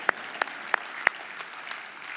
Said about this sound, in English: There's a slow clap. We're not sure.